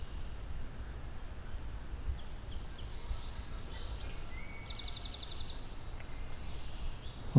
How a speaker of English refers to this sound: Pine siskin. That kind of pew pew flying over.